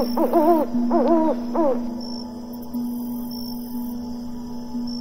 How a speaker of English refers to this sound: And you hoot, hoot. Do you know what animal you are tonight, little explorer? Yes, you are an owl.